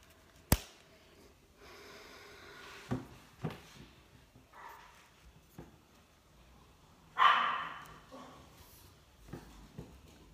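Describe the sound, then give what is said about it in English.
A dog barks a few times, sharp isolated yaps with one louder, longer bark near the end, amid scattered thumps and handling noises in otherwise quiet surroundings. “Sorry, that was dog.”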